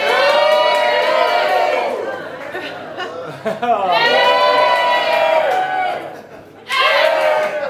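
crowd cheering

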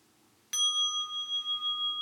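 mindfulness bell being struck

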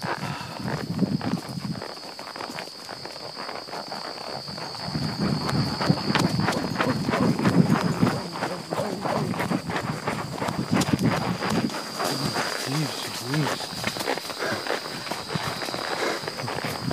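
horse hooves clip-clopping

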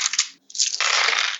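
nine dice being rolled

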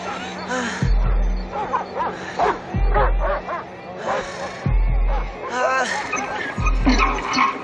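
dogs barking

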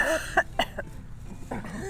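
cough and throat clearing

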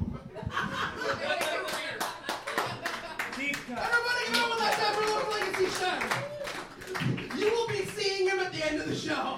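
audience clapping

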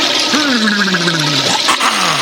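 toilet flushing

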